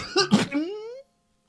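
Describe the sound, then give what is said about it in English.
A voice imitates a character curled up in a corner coughing hard: two or three rough bursts in quick succession, ending in a strained, rising vocal wheeze. Fairly loud, with no other sounds around it. “he saw Dr. Jocka Jocka Jocka Jocka Jock curled up in the corner, coughing so hard that one of his ears popped off”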